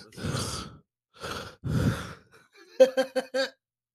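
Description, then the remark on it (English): A voice imitates heavy, labored breathing, likened to Biggie Smalls: three loud, rasping breaths, then a quick run of short voiced gasps at the end. “And then he breathing like Biggie Smalls and Notorious.”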